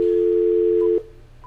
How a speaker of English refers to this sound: there's something that young people won't know what it is. And you know what that is? What? A dial tone. Think about that for a minute.